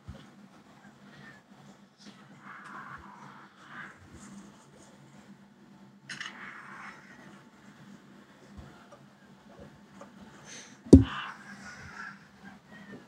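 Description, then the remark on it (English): A bird gives repeated harsh, crow-like caws in short bursts over a low steady hum, with one sharp loud crack near the end. “Can I kill this bird?”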